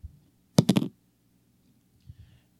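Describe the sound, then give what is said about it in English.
A short clatter of dice rolling, with a quick burst of three or four sharp clicks, then a faint soft thud a moment later. No one speaks. “So that means I'm going to allow you to roll the dice.”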